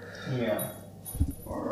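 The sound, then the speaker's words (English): A dog that has just come in to say hello whimpers faintly while moving around, its tail wagging, with a couple of soft low thumps partway through and a murmur of voices in the background. “You can hear his tail flying. I wasn't petting the dog”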